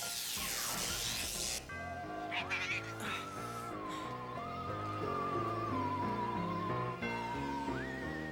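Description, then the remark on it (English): A woman imitates a cat, drawing out wavering, meow-like tones that slide up and down over a steady musical backdrop, loud throughout. “Using her cat voice.”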